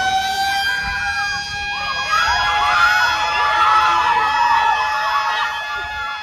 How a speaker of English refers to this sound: So it was very dramatic, actually. Bang, right at 7 p.m., there was this siren that went off, this huge loud sound that I heard coming off from the school nearby.